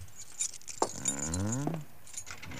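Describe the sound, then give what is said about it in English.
Keys found in a desk jangle and clink in bright, scattered bursts as they are tried in a locked door, with a brief wavering squeak sliding downward in the middle of the rattling. “Where are those keys we found in the desk? Here they are.”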